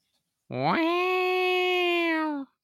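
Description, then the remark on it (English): A single sustained vocal tone rises in a quick swoop, then holds steady for about two seconds before cutting off, a voice imitating a guitar note that comes out sounding like a cat's meow. “I was going for guitar, but then once I did it, I was like, oh, this definitely sounds like a cat.”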